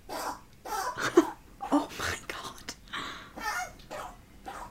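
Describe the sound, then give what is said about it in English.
A pet rabbit named Gatsby, who has hay fever, sneezes over and over: a run of soft, breathy little bursts in quick, uneven succession, with a person's brief exclaimed voice mixed in partway through. “He does sometimes just have these intense long sneeze.”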